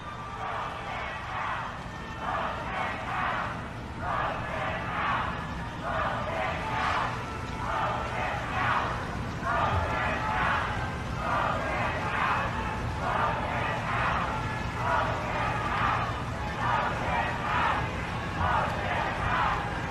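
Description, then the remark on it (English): A large crowd at the memorial service for Ruth Bader Ginsburg shouts in unison, chanting a short phrase over and over in a steady, regular rhythm. The massed voices stay loud and sustained for the whole stretch, echoing slightly. “it was the reaction from those in attendance that lets you know just how much they actually respect RBG”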